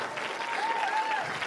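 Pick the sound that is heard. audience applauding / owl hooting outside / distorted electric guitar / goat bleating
audience applauding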